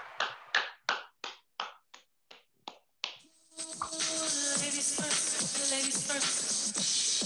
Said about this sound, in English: Let's put it together. Go ahead and clap it up, man. Clap it up, clap it up, clap it up, clap it up.